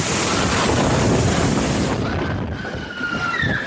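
The winds of Hurricane Irma, an Atlantic storm, roar through a glass building in a loud, unbroken rush of noise with a gusty low rumble, and thin whistling tones rise and waver in the latter half. No one speaks.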